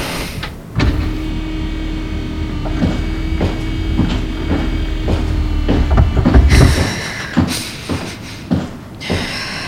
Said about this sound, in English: Right. Opening the door.